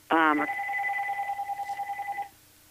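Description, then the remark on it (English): A short electronic tone from a second phone being turned off: a quick rising chirp followed by a steady two-pitch beep lasting about two seconds, pulsing slightly, then cutting off abruptly, moderately loud. “And I'm sorry, let me turn off this other phone.”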